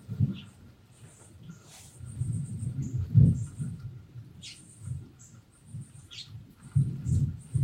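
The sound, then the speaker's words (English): Low, rolling thunder rumbles on and off for several seconds, swelling and fading, while thin high-pitched bird chirps or squeaks sound faintly above it. “I didn't want to talk over the thunder, but listen to it. It's still rumbling.”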